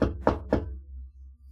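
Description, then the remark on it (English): Three evenly spaced knocks on a wooden door, solid, followed by a quiet low hum as the room settles into near silence. “Come on in! Door opens.”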